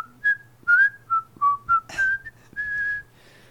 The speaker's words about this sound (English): And I whistle. I'm whistling a little bit.